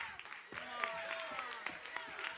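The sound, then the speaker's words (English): An audience at a Pentecostal service tonight claps hands unevenly, not everyone joining in, with scattered overlapping claps rather than a steady beat, over a murmur of voices and a sustained tone. “I'm watching this congregation tonight, and we can't even get everybody to clap their hands.”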